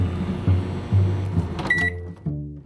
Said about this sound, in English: Milly zapped something nice and warm in the microwave to sip on while we chatted